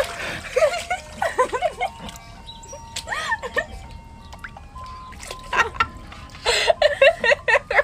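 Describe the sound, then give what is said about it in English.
Irregular water splashing and bubbly gurgling as a person's head is dunked under the water, with muffled voice-like gurgles underneath and a louder flurry of splashes near the end. “literally just dunked my head under the water.”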